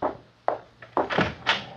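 A heavy door is opened to let in arriving guests: several wooden clunks and rattles of a latch, then a creaking swing with a couple of dull thumps. No voices.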